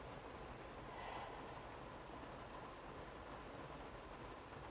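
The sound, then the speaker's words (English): Steady, soft rain patters on the roof of a car with someone sitting inside, an even, hissing wash of sound, continuous throughout with no voices and no distinct individual drops standing out. “I'm in my car and you can hear the rain falling.”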